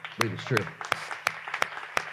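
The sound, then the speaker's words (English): Steady rhythmic clapping from an audience affirming belief that God will provide for a building project, about six sharp claps at an even beat, with some vocal murmur underneath at the start before the claps continue on their own. “Okay, can we clap?”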